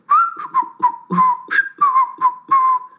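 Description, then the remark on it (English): A relaxed, wandering whistled tune carried on a steady pure tone, with short breathy breaks between phrases, fairly loud with nothing else around it. “In a very easygoing manner, Hissyfit began to whistle.”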